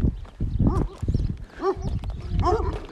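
Five mastiffs at a place with goats and sheep bark and yelp together in an overlapping, excited chorus, with sharp rising calls repeating every second or so, loud throughout.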